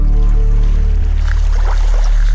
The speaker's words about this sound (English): You can hear the water there rolling up on the shore